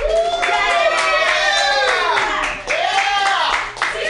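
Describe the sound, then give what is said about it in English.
An audience at Pamdaz's Comedy Clubhouse at Mutiny Radio claps steadily for about four seconds while the host runs around, a dense, even patter of many hands, with excited whoops and cheering voices rising and falling over it. “That's when you clap, and that's when I run.”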